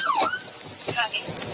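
A short police siren whoop sweeps down and back up, followed by a quicker chirp, sounding fairly close amid street background noise.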